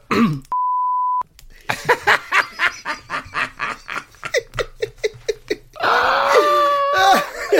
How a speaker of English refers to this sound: I'll tell you and I'll beep it out as well.